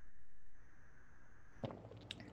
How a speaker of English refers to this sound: Just taking a sip of water. I'm doing a lot of talking.